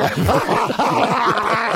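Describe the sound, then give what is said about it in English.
A dog barks rapidly and continuously, the loud, excited yaps tumbling over one another in a dense, unbroken stream for the whole moment. “Well, he certainly wouldn't get the barking dog, Zoe.”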